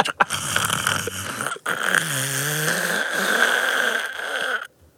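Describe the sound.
A voice imitates a diesel train engine with a gravelly, throaty rumble held for about five seconds. A wavering hum rises in the middle before the sound cuts off abruptly.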